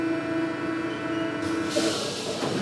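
A metro train hums along with a steady, multi-toned electric motor whine over low rumble, then a sharp airy hiss rises and lingers toward the end.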